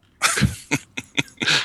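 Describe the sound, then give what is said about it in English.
Harsh coughing right up close to the microphone: a long rasping cough, then three short sharp hacks and a final drawn-out cough, loud and with no talking. “Your cough button is broken. You just cough right over the mic.”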